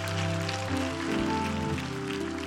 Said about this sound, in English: And let's give yourselves a rousing applause. Come on, all of you.